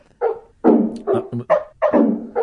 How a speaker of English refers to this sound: Barking dogs for 12 hours. What? Oh, 12 God. 12 hours. It's had 1,116 views. 12 hours. Stop, please. Of synthesized dogs just in random keys.